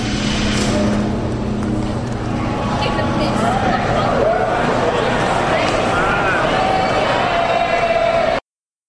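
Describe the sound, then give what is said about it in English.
Dense crowd hubbub fills the convention hall at Gen Con on a Saturday, passing the Off-World Designs booth, many overlapping voices blending into a steady, loud babble with no single voice standing out, plus scattered footsteps and faint shuffling throughout. “Pulling into Gen Con for Saturday, walking by the Off-World Designs booth.”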